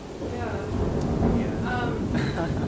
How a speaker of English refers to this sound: I don't know if everyone can hear this, but there's some really dramatic thunder going on in the background.